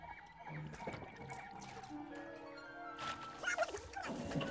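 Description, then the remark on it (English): Water sloshes and splashes continuously as a droid wades through periscope-deep marsh water toward shore, with gurgling bursts growing busier toward the end, and thin warbling tones drifting in the background. No one speaks. “Lucky the water's only periscope deep.”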